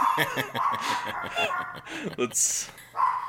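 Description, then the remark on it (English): A dog named Stella barks several times in short, sharp bursts, mixed in with people talking and chuckling. “She gets tired from barking.”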